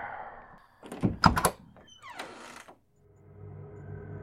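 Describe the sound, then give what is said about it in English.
A door opens: a few sharp clunks of the latch and handle, then a short creaking sweep as it swings, followed by a low ambient hum. No one speaks. “Well, she's right behind this door.”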